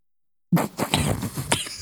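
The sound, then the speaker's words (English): After a moment of silence, a sudden cough bursts out off-axis from the microphone, followed by a few rougher, breathy hacks in quick succession. “Cough off axis.”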